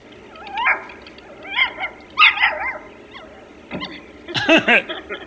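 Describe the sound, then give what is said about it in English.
A dog in an online video yips and whines in short, high-pitched bursts, then lets out a few sharper barks close together near the end, clear with no talking. “So you type in dogs, and then you see it, brings up a million things, sites about dogs, pictures of dogs, you can watch videos of dogs.”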